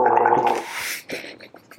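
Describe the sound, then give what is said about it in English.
A short bout of throaty gargling of a drink of Fresca: a loud, bubbling, voiced rattle for about a second, then trailing off into softer wet sputters and splashes. “You're gargling down that beach, aren't you?”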